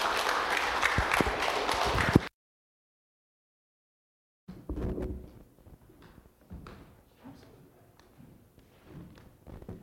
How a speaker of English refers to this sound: If you will, give her a round of applause. Make her feel welcome, church.